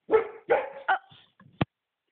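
A female dog barks three times in quick succession, loud, followed by a couple of softer yips and a short sharp sound at the end.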